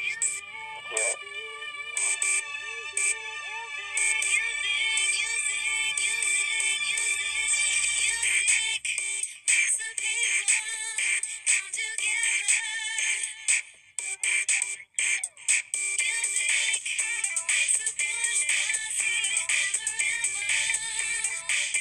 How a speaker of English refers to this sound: And the second round, as everyone knows, is the music round, and it has a theme song that goes like this.